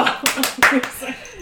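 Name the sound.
a person clapping hands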